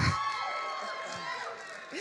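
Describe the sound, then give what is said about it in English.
A crowd cheers and whoops steadily for a couple of seconds, a dense wash of many voices, with a few higher shouts rising above the noise. “Y'all gotta wait before you give me applause.”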